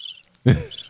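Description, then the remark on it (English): High, thin cricket chirping trills steadily, briefly interrupted midway by a louder low thump before the chirps resume faintly in the background. “Just crickets.”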